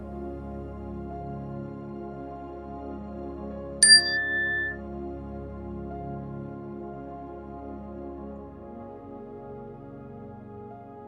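A single bright meditation chime struck once at the start of a meditation, ringing clearly and then fading over about a second against a steady low background hum, with no voices present.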